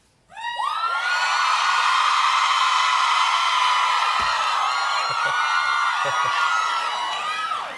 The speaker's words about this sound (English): all right, let's hear a … scream. Girls, come on.